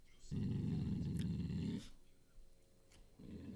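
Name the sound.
dog growling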